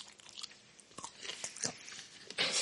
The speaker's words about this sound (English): Yeah, we're chewing on some sausage sticks.